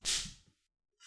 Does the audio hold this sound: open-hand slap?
yes